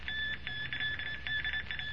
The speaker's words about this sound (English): As Kent and Major Campbell attempt to record the dots and dashes of the unknown wireless code coming from the hidden shortwave receiver